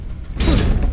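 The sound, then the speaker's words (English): A heavy cell door clunks and unlatches, then slides open with a grinding, rumbling scrape that fills the second half of the moment, fairly loud, with no voices. “The door's open!”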